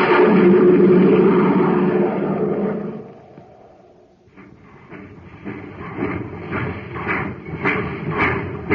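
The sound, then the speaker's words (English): The Terra Express train labors to pick up speed on ordinary fuel: a heavy, roaring rumble dies down, then slow, rhythmic chugging puffs start up and repeat steadily over a low mechanical drone, with no voices. “That's the Terra Express train trying to get up speed on ordinary fuel.”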